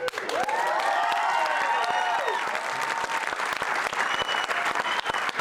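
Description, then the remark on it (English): A crowd breaks into loud, sustained applause at the news that a couple is having their first baby in a month, a dense steady patter of clapping, with high whooping cheers rising over it in the first couple of seconds before the clapping carries on alone. “But we have additional applause-worthy news, because in a month, you guys are having your first baby, yes.”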